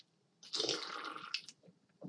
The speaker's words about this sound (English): Excuse me. I had to wet the beak. Get a little sippy sip in. This delicious Coors Light.